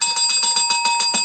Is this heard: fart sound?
no